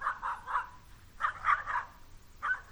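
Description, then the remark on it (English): A dog barks in quick sets of three, short harsh barks repeated with brief pauses between, with no one talking. “I learned that this dog hates me.”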